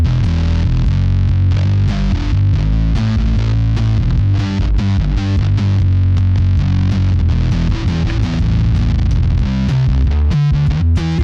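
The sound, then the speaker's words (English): Slap bass played through heavy fuzz: a dense, buzzing, distorted low tone with sharp percussive plucks and pops in a busy, steady rhythm, loud throughout with no talking. “This is what it sounds like when you slap at the bass with fuzz.”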